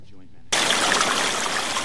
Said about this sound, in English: Sometimes it's loud. Sometimes it's quiet. That water can be unpredictable.